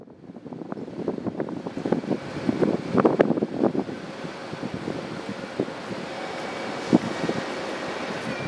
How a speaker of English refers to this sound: In Prague, I spent hours at the train station. I watch the trains come and go and imagine Hannah's departure.